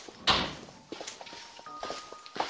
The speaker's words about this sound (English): kindly shut the door behind you.